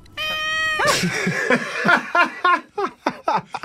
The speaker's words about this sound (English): That's a loud cat. Yeah, a very vocal cat.